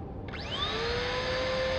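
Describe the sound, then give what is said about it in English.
A small helmet vacuum motor is switched on to clear sweat beads floating inside the helmet; it spins up, its pitch climbing quickly before settling into a steady, high-pitched whirring hum over a bed of rushing air. “Activate helm hoover.”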